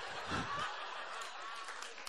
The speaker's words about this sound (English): Why would you applaud that? It was a bad pizza.